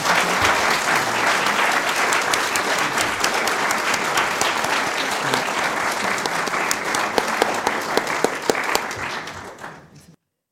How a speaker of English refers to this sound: And now I'm going to ask you to give another round of applause for Blake.